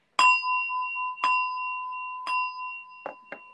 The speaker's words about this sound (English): I'm actually gonna, if it's okay, can I ring my Tibetan bell? Just go ahead, please. Put in space.